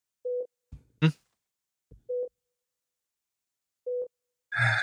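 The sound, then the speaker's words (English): A heart rate monitor beeps softly, three short steady electronic tones spaced about two seconds apart, with a few brief thumps and a burst of clatter between and after them. “The heart rate monitor. Oh, get the beeps. Beep softly.”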